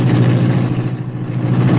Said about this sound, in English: Britt Reed pressed a button. The green car roared into life.